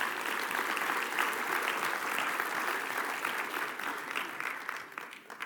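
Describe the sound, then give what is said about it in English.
A crowd of people claps steadily for several seconds, a dense patter of many hands that holds even and then thins slightly toward the end, with no voices over it. They are applauding people who were up front during a sermon as they return to their seats. “Give them a little applause there.”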